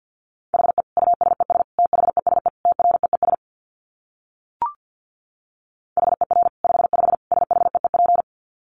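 Rapid Morse code at 50 words per minute in a single steady mid-pitched tone, keyed in fast dots and dashes across two bursts with a silent pause and a short click between them. There is no talking.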